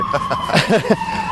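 A steady, high siren tone from an emergency vehicle holds throughout, dipping slightly in pitch near the end as it passes, with voices briefly talking over it.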